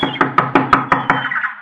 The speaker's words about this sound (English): A shack put together with paper, paste, and wire. I knocked politely.